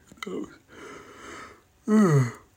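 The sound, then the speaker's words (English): A long, breathy inhale, then a loud voiced yawn that slides downward in pitch and trails off. No words are spoken. “Sorry, I'm kind of yawning all of a sudden.”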